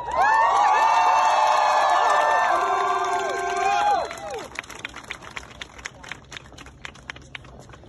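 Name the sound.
crowd applause and cheering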